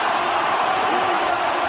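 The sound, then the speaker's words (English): A dense, steady roar of a large stadium crowd, loud and continuous throughout with no pauses, cheering at full volume in the final seconds of a State of Origin decider as Queensland beat the Blues at home. “he's motioning to the crowd to get excited. Well, they can't get any more excited”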